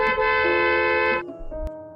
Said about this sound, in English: The sound of a guy honking his horn in traffic.